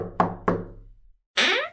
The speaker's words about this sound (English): Quincy and Godalming knocked at the door.